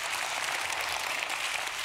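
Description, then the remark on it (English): An audience claps together in a dense, steady burst of applause, many hands blending into a continuous crisp patter at an even loudness, with no voices over it, clapping to the Lord as a step of faith. “And can you do a step of faith this morning and clap to the Lord and say, Lord, I receive this joy.”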